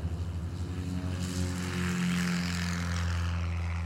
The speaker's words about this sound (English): The engine whirs into life. He bounces along the dusty airstrip, then ascends into the dawn sky.